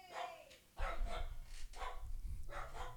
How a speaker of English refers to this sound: Fucking dogs, this is what I'm saying.